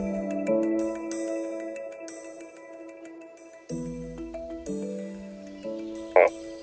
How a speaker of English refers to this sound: Can you hear the difference between this frog and this frog? Let's listen again. This frog and this frog. The giant burrowing frog in particular, they usually have a grumpy face, I've noticed. They make kind of a trilling, almost owl-sounding